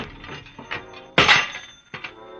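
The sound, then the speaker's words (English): A telephone is wrenched loose with a rattle of mechanical clatter, then a loud sudden crack and clunk of breaking parts, followed by a smaller jolt near the end. “Well, before I try, I'm going to rip something off. No, not your head. Just the telephone.”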